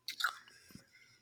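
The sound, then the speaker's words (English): Chewing on sticky, firm black licorice candy: a couple of wet, crunchy bites at the start that fade into softer mouth noises and a low thump. “You hear me chewing?”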